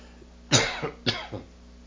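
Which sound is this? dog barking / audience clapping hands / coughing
coughing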